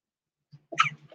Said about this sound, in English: Look, with your face burning all that sneezing, honey.